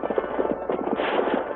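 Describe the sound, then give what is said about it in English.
Rapid, rhythmic hoofbeats of the galloping horse Silver, surging ahead of other riders' horses, pound steadily in a continuous drumming run of thuds with no pauses and no voices over it. “With a great surge of speed, the mighty Silver plunged ahead of Tom Bates' horse.”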